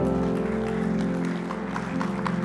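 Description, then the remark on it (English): An audience claps their hands together in steady, dense applause for the Lord, blended with sustained musical tones playing underneath throughout. “Let's give the Lord a hand clap today.”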